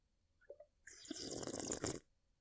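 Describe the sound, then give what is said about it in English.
A voice imitates bong water bubbling: a couple of short wet mouth clicks, then about a second of loud, rapid, hissy gurgling with water rattling in the mouth, ending abruptly. “No, I used to make that noise joking in college. Like, I was hitting a bong. I'd put water in my mouth and do this.”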